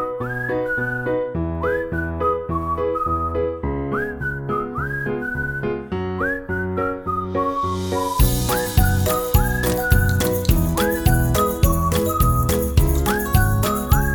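Cheerful, bouncy instrumental tune led by a whistled melody with little sliding notes, steady rhythm underneath; about halfway through, drums and brighter percussion join and the arrangement grows fuller. No one speaks.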